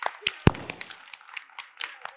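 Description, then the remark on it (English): Scattered audience applause for a participant who answered a question about George Washington: a flurry of irregular, sharp handclaps with one louder clap near the start, continuing at a moderate level for a couple of seconds. “Let's a round of applause for this brilliant person.”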